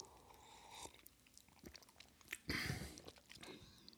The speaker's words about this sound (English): This coffee that we are tasting right now. Let's just take a sip.